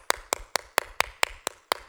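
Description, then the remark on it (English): Eight crisp, evenly spaced hand claps in a brisk steady rhythm, fairly loud, with no voices and only brief quiet between each clap. “The four rows on this side and the five rows on this side, all of them were clapping.”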